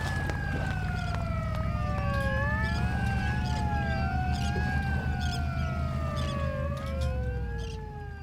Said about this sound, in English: A minute later, I heard the sirens.